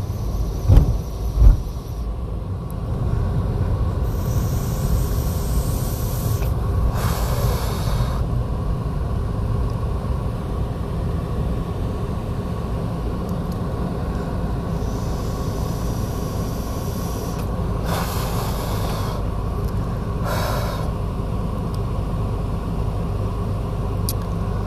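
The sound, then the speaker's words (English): A car lets out a loud, shrill screaming noise in a few bursts over a constant deep engine and road rumble, with no one speaking. “Please excuse me while my car screams.”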